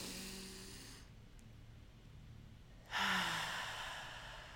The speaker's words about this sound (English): Let's start taking deep breaths in the beginning of each episode. Ready? Like, together. Let's do it together, guys. Ready? 1, 2, 3, inhale.